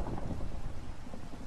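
Steady rain pours down with a low, rumbling roll of thunder underneath, a dense, continuous wash of sound with no voices.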